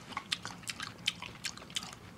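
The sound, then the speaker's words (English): Wet, smacking chewing of food, a quick irregular run of soft crunchy bites and squishy clicks repeating for a couple of seconds at a fairly quiet level, with no talking. “In the goddamn refrigerator, eating up all the food, all the chicken, all the pig feet.”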